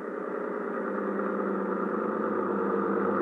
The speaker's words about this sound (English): Oh, wait a minute. Wait a minute. That boat coming in is probably Ibarra.